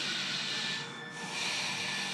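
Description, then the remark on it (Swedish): A voice imitates heavy, mechanical respirator breathing through the nose: a loud, airy hiss that swells, dips briefly in the middle, then rises again, with no talking. “Och så andas han så här. Men det är typ jag när jag andas genom näsan.”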